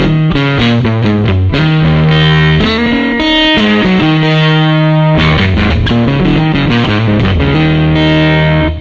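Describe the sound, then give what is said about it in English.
A distorted electric guitar plays a loud riff of sustained chords and single notes through a combo amp with its bass control turned all the way up, giving heavy, boomy low end that sounds thick and slightly muddy. No talking. “So it only starts to get a little bit muddy once you get the bass all the way up.”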